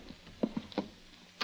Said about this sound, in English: Before I could look any more, a key sounded in the door lock outside. I moved behind the door and let it open.